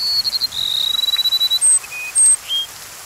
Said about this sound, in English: And a rufous-winged sparrow voices its gentle melody.